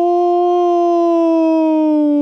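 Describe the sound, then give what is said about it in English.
A person's voice imitates a howl: one long, sustained moaning note lasting about two seconds, fairly loud, sliding slowly downward in pitch, with no other sounds. “I remember the times I woke up darting out of bed to this howling. And this is what it sounded like.”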